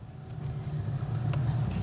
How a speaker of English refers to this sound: A light rain is falling as we drive the two-lane highway to Chiriquí Province's capital city of David.